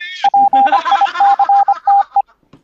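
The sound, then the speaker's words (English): A rapid, uneven string of about a dozen short, loud electronic beeps tangled with warbling synthetic chirps, as a dying headset's low-battery alert stutters. “Dude, I killed my fucking headset last night.”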